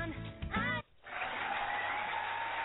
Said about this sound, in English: Whoa, that is an exciting crowd. The audience is large tonight. We have a really big group tonight packed on the house. Show. Yeah. Is that not the usual self-ingratiating applause? No, the usual self-ingratiating applause is this.